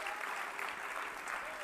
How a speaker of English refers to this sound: Oh, so somebody give the Lord a good hand clap today, because your hope is in Jesus.